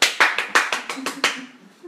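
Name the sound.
hands clapping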